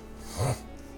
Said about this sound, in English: Oh yeah, just sniffle right into the mic.